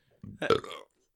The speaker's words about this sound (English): Do not burp on the podcast